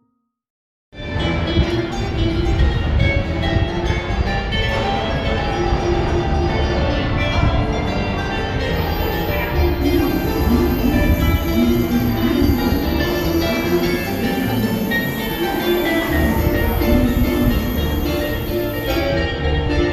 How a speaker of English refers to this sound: Arrived at Surbiton in the southwest of London. Took southwestern trains, don't normally take southwestern trains. Relatively comfortable journey.